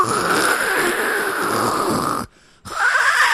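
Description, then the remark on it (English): Actor Sonny Chiba, in a film fight scene in the mud, makes noises like a cat hacking up a hairball: a loud, raspy, throaty rasp that runs for about two seconds, breaks off briefly, then starts again. “Can we point out that Sonny Chiba has the great cat vomiting up a fur ball, like noises he makes?”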